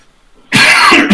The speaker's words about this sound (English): So as you are coughing and hobbling out, you go out the doors and you take a left.